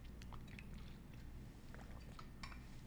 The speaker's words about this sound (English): Let me just drink water. My throat is like feeling dry right now.